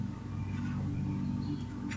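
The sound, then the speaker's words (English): A lawnmower engine drones steadily throughout, a low buzzing hum with a constant pitch and even loudness, with no voices and no breaks in the sound. “You guys hear that lawnmower going in the background?”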